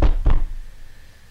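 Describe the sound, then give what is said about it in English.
Two heavy knocks in quick succession, a fist thudding on a solid surface, loud, followed by a short fading resonance and quiet. “We each make distinctive fists to knock.”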